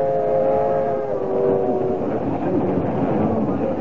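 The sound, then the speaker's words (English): A steady, loud rumble of a passenger train rolling along the rails, with sustained tonal hums drifting across the first half and a continuous mechanical roar throughout. “Heck, some people don't know there are still trains running.”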